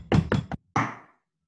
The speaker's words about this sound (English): How are people finding the gaveling thing going thus far?